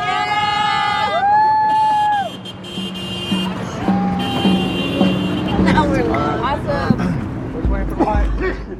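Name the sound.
support cars honking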